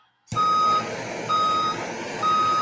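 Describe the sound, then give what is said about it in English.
A dump truck's reversing alarm sounds three steady, evenly spaced beeps over a loud rumbling diesel engine, with no voices. “I thought you were going to hit back the dump truck up.”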